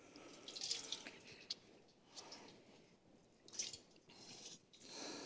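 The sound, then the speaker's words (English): Water sloshes and splashes in a basin in irregular, soft bursts with a few brighter drips, fairly quiet, with no one talking. “I wish you could see this water.”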